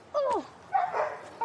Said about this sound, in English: Stop barking. Stop barking, wolf. Let's not yell.